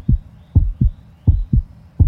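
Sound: fast heartbeat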